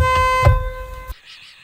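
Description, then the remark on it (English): A thin, feeble car horn blares in one steady honk for about a second, fairly loud, with a couple of low thumps underneath before it cuts off abruptly into quiet. “Like, it sounds like I'm driving around a gosh darn smart car.”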